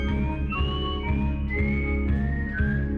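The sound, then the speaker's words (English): An eerie, wavering whistle-like melody glides slowly over a steady droning musical backing, each held note bending gently into the next, loud and continuous with no talking. “the introductory music of right after Ginger's theme, the kind of, you know, almost X-Files-esque whistle sounding”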